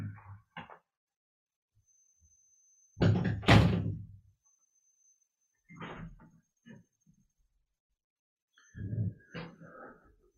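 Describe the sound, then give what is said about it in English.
A door is pushed shut by the speaker during a talk, with a loud thud and rattle followed by a couple of softer knocks and bumps, amid otherwise quiet surroundings and no talking. “I'm going to close this door.”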